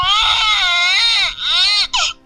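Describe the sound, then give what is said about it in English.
A baby cries loudly in long, high-pitched wails, one sustained howl followed by a shorter one and a brief sobbing catch at the end, with no talking. “There's a baby in the top of this toilet that I was upper decking.”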